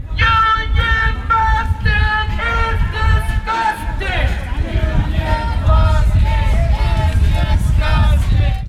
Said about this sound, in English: I'm currently standing just across the street from the Starbucks coffee location on the Capitol Square. Just outside, crowds of people holding union protest signs and megaphones and chanting.